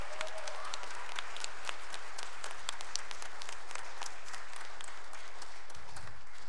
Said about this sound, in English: We're so thankful for her, and let's give her another round of applause for serving our church.